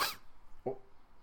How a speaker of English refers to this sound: Almost sneezed there.